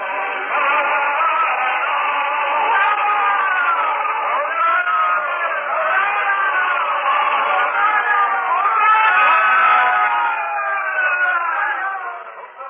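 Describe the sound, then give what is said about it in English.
A large crowd at a city gate cheers and shouts all at once as a man rides toward the gate on a donkey, a dense, steady roar of many overlapping voices that stays loud for the whole stretch before easing off at the end. “And now, someone spies him as he rides toward the city gate upon the back of a donkey, and a great cry goes up.”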